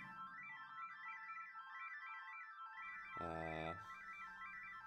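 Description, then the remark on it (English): An Ondes Martenot, an electronic instrument created in 1928 by French musician Maurice Martenot, plays a smooth, sustained tone whose pitch glides steadily up and down in a wavy pattern. Near the end a lower, richer note swells in briefly. No voices. “Sounds like a MIDI flute orchestra.”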